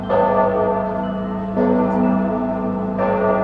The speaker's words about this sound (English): It was then that the bells from campus rang out 10 o'clock.